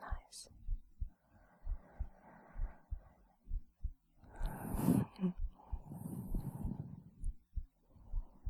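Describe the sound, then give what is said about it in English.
A slow, steady heartbeat thumps low in paired beats throughout, with soft whispering drifting over it and a brief rustle in the middle. “Wandering and drifting, just bring it back to my heartbeat. Just focus on my heartbeat.”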